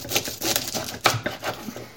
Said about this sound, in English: So with this whole bulb of garlic, I'm just chopping the bottom off it.